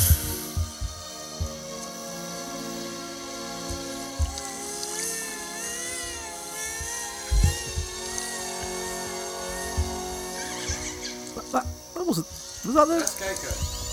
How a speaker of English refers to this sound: orcas make a very typical high pitch. It's quite beautiful when you hear it on sonar.